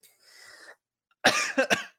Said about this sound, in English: I am so sorry. I'm still coughing. And I'm going to take a hit of my fancy new inhaler that I have.